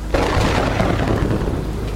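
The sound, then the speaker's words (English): Heavy rain pours down loudly and steadily on a sailboat after a sudden start, with a deep rumble of thunder rolling underneath the whole time. No voices are present. “I ducked under the boom and went out into the now heavy rain.”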